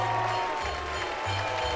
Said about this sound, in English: They're booing Croton.